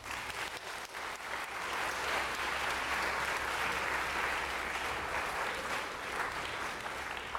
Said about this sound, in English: Can we get a round of applause for our winners?